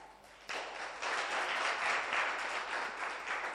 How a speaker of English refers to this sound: How many of you are excited to be in church? All right, you can clap.